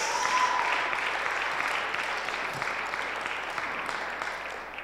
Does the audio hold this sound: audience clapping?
yes